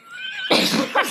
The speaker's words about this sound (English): Sorry, I know I sneeze so loud. Let it rip, boo. You don't have to suppress your sneezes.